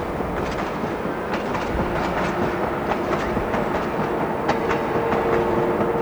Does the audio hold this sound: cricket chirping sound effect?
no